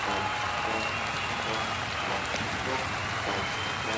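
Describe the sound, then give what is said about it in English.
A steady wash of crowd applause, dense clapping that holds at an even, fairly loud level throughout without pause or build. “Let's let the crowd bring it in a little bit.”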